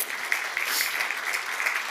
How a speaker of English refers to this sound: Look at all the people who are connected, and that's just some of them. We've got close to 20 discipleship groups. You can clap for that if you like. Yeah.